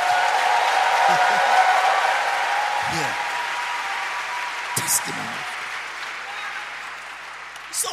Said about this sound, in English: Now you can clap like Christians.